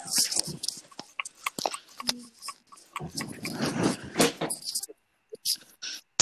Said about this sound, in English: I'm trying to eat strawberries. I kind of have to bite it.